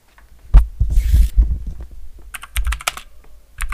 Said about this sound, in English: Oh, don't use your keyboard.